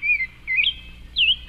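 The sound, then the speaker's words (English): A rose-breasted grosbeak sings a sweet, warbling phrase of rising and falling whistled notes, with short bursts separated by brief pauses, clear and fairly loud with no talking. “And rose-breasted grosbeak is another one that sounds pretty similar.”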